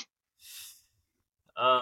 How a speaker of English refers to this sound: who is breathing like that? Jesus Christ. Jesus Christ.